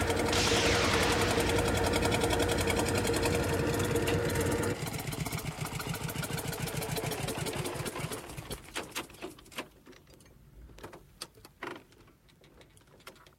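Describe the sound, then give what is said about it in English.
A single-cylinder Dion veteran car engine runs with a fast, steady mechanical chatter, then slows into spaced, irregular putts as it winds down toward the end. “Turn it over on the handle, and it sucks its teeth at you. Rev up, and it goes all over Twitter.”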